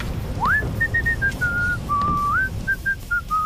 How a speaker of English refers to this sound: During Chapter 2, the Thief Taker General can be heard whistling a tune at the end of a cutscene.